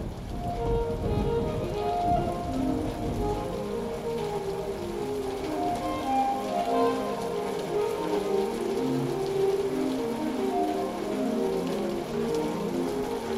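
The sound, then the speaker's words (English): Heavy rain pours down steadily in Perth, a dense, continuous patter of drops drumming on hard surfaces, with a low rumble underneath and no voices. “But when the rain does fall, it's thick and heavy.”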